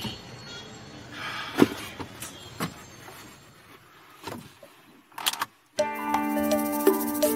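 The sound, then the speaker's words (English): Steady car engine and road rumble in traffic, with a few sharp metallic jingles like keys being jangled, then a brief cutout before music starts playing over the vehicle noise. “Come on. Move. Freaking traffic.”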